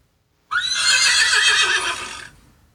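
A single loud horse whinny, clear, rising sharply then trembling in a long quavering call for nearly two seconds before trailing off. No speech.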